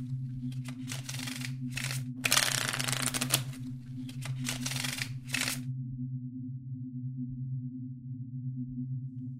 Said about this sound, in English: He took the card from the felt, mixed it back into the middle of the deck, shuffled twice more, and dealt.